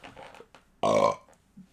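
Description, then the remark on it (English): A single loud burp erupts with a rough, throaty rasp lasting a few tenths of a second, surrounded by faint breathy mouth noises. “Damn, that was a good burp.”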